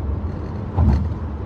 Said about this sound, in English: Look at that car flying.